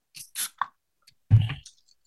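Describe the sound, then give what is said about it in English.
A bottle of Time of Death, a 9% hazy double IPA from a Drucker and Bottle Logic collaboration, is opened: a few quick metallic clicks and scrapes, then a louder pop with a short burst of fizzy hiss, trailing off into faint crackle. No one talks. “Let me pop this guy here.”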